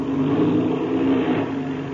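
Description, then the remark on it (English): An airplane engine is given a short burst while the plane coasts toward the field, roaring steadily for about two seconds, a loud low droning hum with a slight swell in pitch and power midway before easing off a little, with no voices. “Yes, I'll have to give her a burst or two, all right?”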